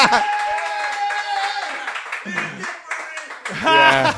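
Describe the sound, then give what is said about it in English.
An audience votes by round of applause between the films Any Given Sunday and Rudy, applauding and cheering for about four seconds, with a dense wash of shouting, whooping voices over the clapping and a louder swell of yells near the end. “Now, by round of applause, we're going to be doing it.”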